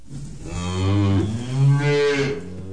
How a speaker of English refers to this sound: I hear the cattle lowing in the field.